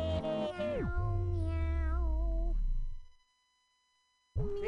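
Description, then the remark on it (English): A cat gives one long, drawn-out meow with a wavering pitch, loud, then a pause before another meow begins right at the end. “Meow. Meow, meow.”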